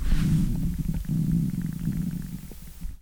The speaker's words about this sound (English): The next word, ooh, I feel a stomach growl coming on. Ooh.